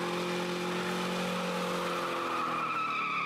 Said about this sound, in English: Feeling the vehicle moving closer, I do my best to maneuver out of the way.